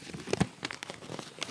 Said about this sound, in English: It's just sounds of stuff like unwrapping boxes and like... sound of paper.